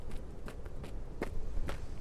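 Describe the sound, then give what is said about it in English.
Slow, quiet footsteps as Mutt creeps up the last few steps to a door, about six soft scuffing treads in an uneven rhythm over a low rumbling background, with no voices. “Mutt crept up the last few steps to the door, getting his lockpicks out, now down by one hook.”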